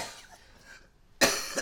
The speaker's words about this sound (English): Got this cough.